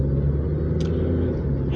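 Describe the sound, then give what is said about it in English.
Steady low engine rumble from inside a moving car driving to work in heavy, jam-packed morning traffic, with a constant road drone and a brief faint click partway through; no one speaks. “I'm headed to work, and this morning traffic is very, very jam-packed.”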